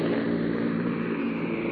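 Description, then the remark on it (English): A steady, loud engine drone with a low, even hum from C-47 transport plane engines throttled back, heard from inside the plane as paratroopers jump over the Netherlands, continuing without a break and with no voices. “They're throttled back now.”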